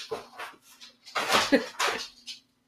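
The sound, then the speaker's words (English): A dog named Rolly scratching and moving about, a string of irregular scuffing, rustling bursts of moderate loudness with short pauses between them, over a faint steady low hum. “So if you hear him scratching and walking around.”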